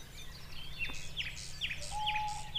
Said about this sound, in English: I do know that's an owl.